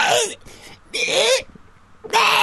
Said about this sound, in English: But for whatever it is, no matter where I go in this house, this cat follows me absolutely everywhere and makes the fucking weirdest noises. What's the noise?